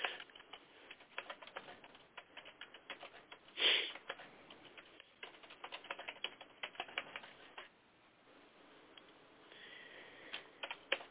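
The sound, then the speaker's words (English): Rapid, continuous keyboard typing clatters away in the background of a phone call, with dense irregular keystrokes, a brief louder burst near the middle, then softer, sparser tapping toward the end. No one speaks. “Boy, that's a lot of typing there in the background.”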